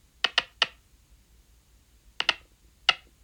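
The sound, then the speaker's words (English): Brainwaves, electrochemical signals of neurons firing, recorded courtesy of the University of Leicester and played through a speaker that converts them into sound: sharp, crackling clicks, a quick burst of three, a pause of about a second and a half, then three more irregular pops. No voices. “Courtesy of the University of Leicester, here's what they sound like when hooked up to a speaker that interprets the chemical electrical signal into a sound we can hear.”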